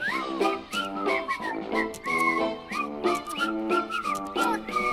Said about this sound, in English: Listen to us whistle adorably.